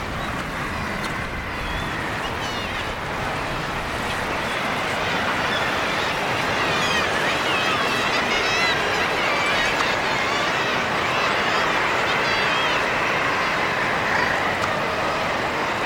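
A dense, unbroken din of seabirds calling from a colossal colony of guillemots on sea cliff ledges, countless overlapping squawks and cries blending into a loud, steady clamour with a rough wash of background noise.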